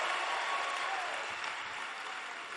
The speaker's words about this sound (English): Give the Lord a mighty clap offering and you may be seated.